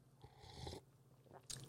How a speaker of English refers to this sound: So you're getting the pure unfiltered me when I take a sip of coffee, as I will do right now.